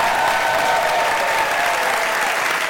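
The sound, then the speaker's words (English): A large audience claps steadily for Adam Savage at a live show, a dense, even wash of applause that fills the whole stretch at a fairly loud level with no voices standing out. “Ladies and gentlemen, I would like you to have a huge round of applause for Mr.”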